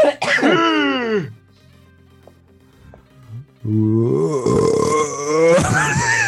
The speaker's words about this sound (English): There's a little bit of a belch in there, sorry.